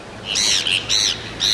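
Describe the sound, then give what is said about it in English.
Harsh, nasal calls of a Heermann's gull, a gull with a very dark back, powder white head and blood red beak, repeat three times in quick succession, each a loud bright squawk with a slightly wavering tone, with no talking. “Watch for a gull with a very dark back, a powder white head, and unmistakably, a blood red beak.”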